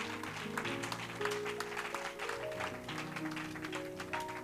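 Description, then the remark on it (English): An audience claps steadily in a dense, continuous wash of applause, giving God a hand clap of praise, with sustained organ-like chords droning underneath throughout. “Can we truly give God sincere hand clap of praise for the engrafted word of God that's able to save our soul?”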